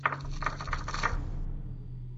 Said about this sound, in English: got a 7 with his brand new dice.